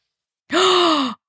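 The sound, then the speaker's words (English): A single sharp, breathy gasp of surprise with a voiced, slightly falling tone, fairly loud, starting abruptly and lasting just over half a second, with no talking around it. “And that gasp, that was also …'s reaction.”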